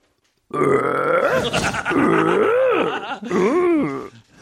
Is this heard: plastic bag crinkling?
no